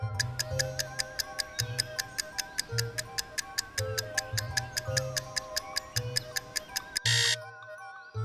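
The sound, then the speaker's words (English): A countdown timer ticks in a fast, steady rhythm over a low musical drone, then cuts off with a short, loud buzz-like burst near the end. No one speaks. “7 seconds, tick-tock.”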